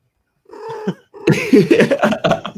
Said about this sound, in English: And that was Pretzels. That was Pretzels the Fulcrum Cat.